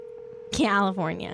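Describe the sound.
A steady, low telephone tone hums for about half a second, then cuts off as a loud voice answers on the line, its pitch sliding downward.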